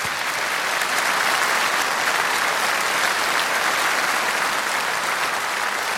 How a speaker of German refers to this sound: ich finde, das ist nochmal ein richtig kräftigen Applaus wert.